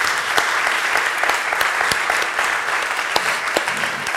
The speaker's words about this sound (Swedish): Och tack till alla som varit här. En varm applåd för dig som kom hit.